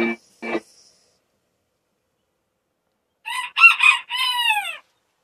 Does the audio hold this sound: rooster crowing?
yes